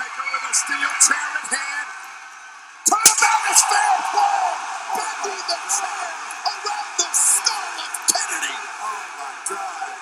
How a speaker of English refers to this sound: I mean, this one is, I never remember this one, but it should go down in, like, the top five nastiest chair shots you'll ever see. It sounds like a gunshot.